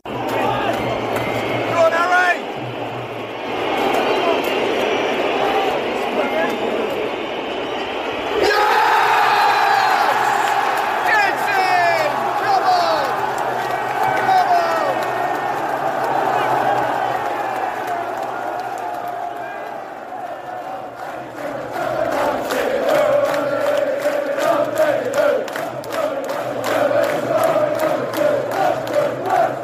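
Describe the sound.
A football stadium crowd cheering inside the Allianz Arena at a Bayern Munich match. A dense, continuous roar of many voices with whoops and shouts rising out of it, dipping briefly before swelling loud again toward the end.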